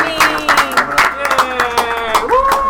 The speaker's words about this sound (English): A little applause